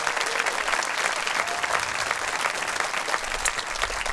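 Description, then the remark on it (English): Steady audience applause thanking the event's photographer, many hands clapping in a dense, even wash that holds at a constant loudness for the full few seconds, with no voices standing out. “Please give a round of applause and a big thank you to our photographer”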